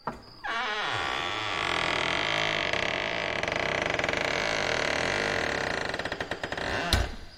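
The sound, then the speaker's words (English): A voice imitates a house door creaking open, one long, rasping, drawn-out groan of about six seconds. Its pitch wavers slowly and it ends in a brief sharp burst. “You slowly start opening the door, and you hear this creak that just, you know, reverberates through the house.”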